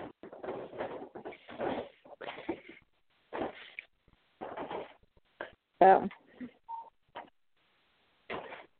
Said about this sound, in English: Oh, evidently I was being too loud. I didn't even notice my mother closed the dining room door.